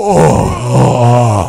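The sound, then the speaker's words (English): A wrestler moans in pain during a wrestling match in a long, wavering groan, his voice rising and falling in pitch over a second and a half, loud and drawn out, with no words spoken. “Some of those moans crack me up.”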